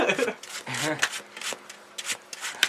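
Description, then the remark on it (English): Tarot cards are shuffled in a run of quick papery riffles and rustles, with a brief voiced sound partway through. “She's so good at shuffle. The shuffle is crazy.”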